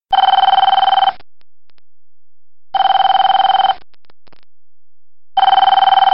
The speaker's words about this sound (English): Now this next ring, this phone ring, this is a different phone ring from what I grew up with, at least at the house. But when I started working at businesses, this was the first telephone ring that I remember hearing.